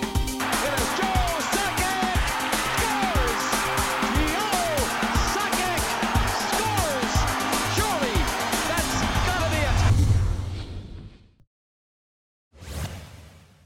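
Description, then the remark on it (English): Five dogs crunching on food, a dense run of sharp, irregular crackles that stays loud and steady for about eleven seconds, then stops, with one more short burst after a pause. “Okay, so the sound of them crunching is definitely showing up on the levels, so.”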